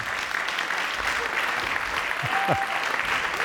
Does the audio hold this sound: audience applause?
yes